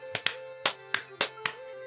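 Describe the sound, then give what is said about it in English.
Several sharp hand claps on a count of one, two, three ring out in a loose, slightly uneven rhythm, some landing in quick pairs as if the clappers aren't quite together, over a faint steady hum with no talking. “You're like, don't speak to me about the claps.”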